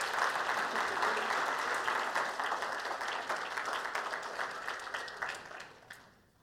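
A group claps steadily in a dense, even patter of applause that holds strong for several seconds, then thins out and fades away at the end.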